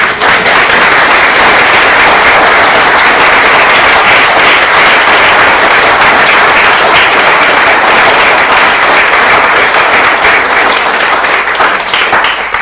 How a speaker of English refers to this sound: I'm sure we would like to give you a round of applause.